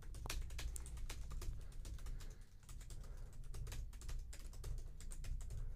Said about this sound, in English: I feel like that one Gabby Hanna meme where she's just like angrily typing into a computer for like an hour.